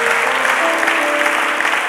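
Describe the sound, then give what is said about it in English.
An audience claps steadily, a dense, loud wash of many hands at once with no pauses, and a faint tonal hum sustained underneath the applause. “Come on, clap if you understand what I'm talking about.”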